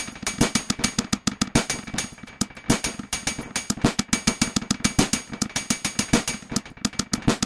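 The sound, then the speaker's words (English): A modular drum patch run through a Mimeophon delay, clocked by a Pico R&D, with a Kraken rim as the snare and a Bassimilus as the hats: dense, rapid percussive hits in a steady clocked rhythm, with booming low kicks and bright clicky transients smeared by repeating echoes, loud and continuous with no talking. “Processing Drums with Mimeophon”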